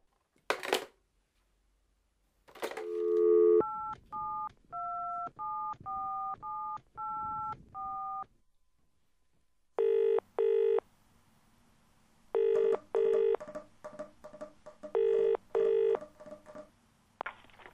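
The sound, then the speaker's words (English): A couple of sharp clunks, then a quick run of seven touch-tone dialing beeps, followed by repeated double-burst ringing tones on the line, clear, with no one speaking. “Phone”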